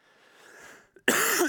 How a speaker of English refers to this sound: Excuse me. Anybody else fighting a cold? Yeah. So if I cough a few times, please forgive me.